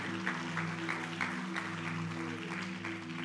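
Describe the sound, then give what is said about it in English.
An audience claps hands in a steady, rhythmic beat, roughly three claps per second, over a sustained droning tone of music, with a wash of crowd noise throughout. “Can you clap your hands and just receive it for our brother?”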